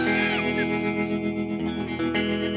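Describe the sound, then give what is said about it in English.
An electric guitar played through an Old Blood Noise Endeavors reverb pedal rings out in sustained, shimmering chords drenched in heavy reverb, with a washy, modulated tail and steady loudness throughout, played alone without any talking. “It's reverb and then a bank of other modes.”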